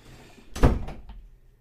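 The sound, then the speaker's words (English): A door swings shut with one solid thud, followed by a couple of quieter rattles as it settles into the frame. Nobody speaks. “Close the door.”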